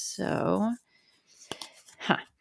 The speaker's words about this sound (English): So I have this big glass jar, literally, and there are slips of paper inside. I'm taking some out, one for you, one for me, one for our audience.